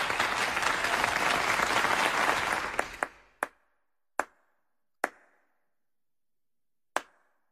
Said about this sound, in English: Hey, clap one more time.